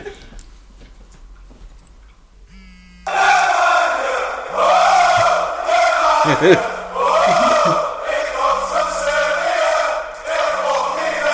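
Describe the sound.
A phone ringtone, called Ferg's official ringtone, of a football crowd chant bursts in after a few quiet seconds: a loud, dense roar of many voices singing in rhythm, with a steady low pulsing tone repeating underneath.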